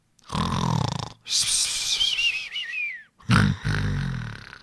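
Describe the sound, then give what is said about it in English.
A strange snore: a low, rumbling inhale, then a high, wavering whistle that slides downward, followed by another deep, throaty snore. Loud and alone, with no talking. “That was a weird snore.”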